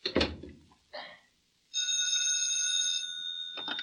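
A telephone rings with a bright, sustained electronic trill lasting over a second, preceded by a couple of short knocks and thumps, and fading into faint movement at the end.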